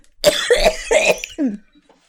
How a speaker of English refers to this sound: I'm going to cough every time I speak. That made me cough.